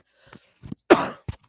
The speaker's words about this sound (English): I forgot to mute. I'm going to try to mute when I cough.